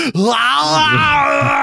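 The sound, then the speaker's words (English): A man in a movie runs out of a building and lets out one loud, drawn-out scream lasting over a second, strained and ragged with a wavering pitch, alone without any talking. “He runs out of the building and screams, displaying what I have felt so many times in my life.”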